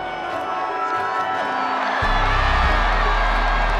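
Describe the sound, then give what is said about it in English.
A big stadium crowd at the Gabba in Brisbane, on its feet at the end of a football finals match, roars and cheers continuously; about halfway through the loud, low final siren blares and holds under the swelling roar. “The crowd almost to a man on their feet there at the Gabba, and the siren's going to sound, and listen to the roar.”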